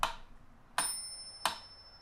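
Sharp, evenly spaced ticks, three in about two seconds, with a high, thin bell chime marking each bar, set to a bar of four, that rings on and lingers after the later ticks. No one speaks.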